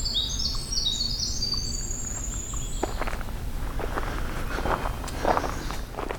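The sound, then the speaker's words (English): High, bright warbler and winter wren songs trill through the first half at a moderate distance, then fade, while steady footsteps crunch along underneath the whole time. “Now, I have a magnolia warbler near this winter end, but I might have a hooded warbler.”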